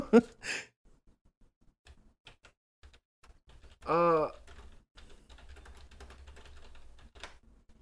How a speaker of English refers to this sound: Hold on. I'm typing and thinking at the same time.